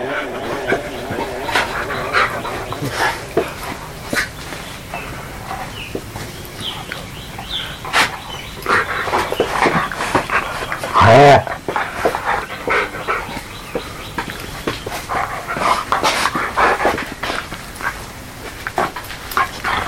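A big two-year-old male Catahoula dog, 72 pounds, whimpers and pants in short, uneven bursts, with a louder yelp-like whine partway through and quick breathy huffs throughout.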